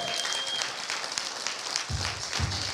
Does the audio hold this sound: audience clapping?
yes